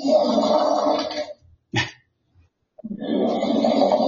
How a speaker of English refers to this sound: I don't know if you can hear them, but he's playing fart sound effects here.